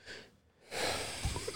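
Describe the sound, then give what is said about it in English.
A stifled, partly held-back burp comes out as a rough, airy gust with a few low guttural bumps, after a short soft breath and a brief pause. No one speaks. “Had to burp there, but I tried to catch it.”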